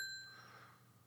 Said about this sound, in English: Congratulations, sir. Bells for you.